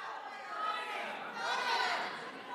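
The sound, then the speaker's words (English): An audience at a comedy gig shouting out where they are from all at once, dozens of voices overlapping into a loud, jumbled roar with no single word standing out, swelling briefly before trailing off after a couple of seconds. “Oh, shout out where you're from.”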